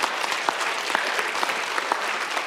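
Steady applause from a crowd, many hands clapping in a dense, crackling wash with a few sharper individual claps standing out throughout. A church audience at Bellwether clapping in praise of God.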